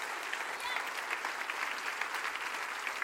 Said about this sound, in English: Stand up while you're clapping. Stand up. Keep clapping.